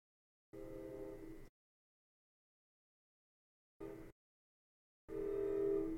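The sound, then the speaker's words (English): A passing train nearby sounds its horn in three blasts, a long one, a short one, then another long one, loud, with silence between and no voices. “And there goes the train.”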